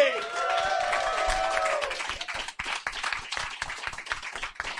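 A show's audience claps steadily and densely for several seconds as guest Ashens comes on stage, with a brief sustained tonal sound, like cheering or music, layered over the first half before only the clapping remains.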